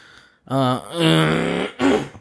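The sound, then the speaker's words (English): A loud throat clearing, a long voiced, gravelly rasp followed by a shorter second burst, with no talking around it. “Still gave me the water, and I still got to clear my throat.”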